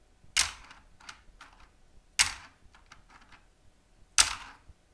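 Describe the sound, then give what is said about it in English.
Sharp plastic clacks from linear mechanical keyboard keys with a very low actuation distance: three loud strikes spaced about two seconds apart, each followed by a scatter of softer key clicks, with no voices. “Even dropping a lens cap on these keys would register multiple key presses.”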